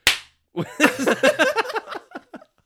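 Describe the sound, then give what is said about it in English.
One sharp, loud hand clap, made to line up video and audio, cracks out alone and dies away quickly, followed after a short pause by a person talking. “We can use that clap to line up our video and audio.”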